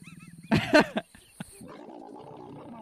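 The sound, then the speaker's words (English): Leopards mating: a low, rumbling growl that rises into a short, throaty roar-like burst, then settles back into a steady purring rumble. “It's like a purr roar.”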